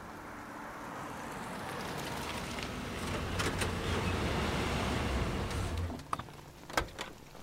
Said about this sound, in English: Stand fast! Incoming truck!